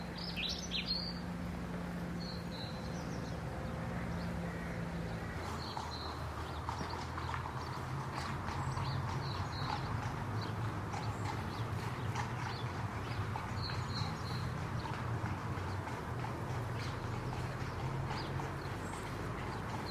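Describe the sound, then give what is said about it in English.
Horse hooves clip-clop steadily on a hard road at a walking pace in Somerset, with birds chirping and tweeting in the background outdoors; no one speaks. “This one, because of the horse's hooves, it's so sweet.”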